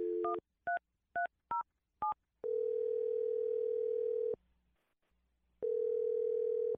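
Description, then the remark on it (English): Five quick touch-tone beeps as a phone number is dialed to make a phone call, then a steady ringback tone that buzzes for about two seconds, pauses, and starts again. Clear, with no voices. “I'm going to dial the phone number for Brielle, and you can make your Awkward Tuesday phone call”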